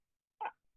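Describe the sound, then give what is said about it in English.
A single short, sharp sneeze bursts out of near silence, fairly loud, with a faint rustle just after it. “Bless you.”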